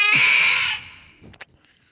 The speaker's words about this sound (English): Random cat.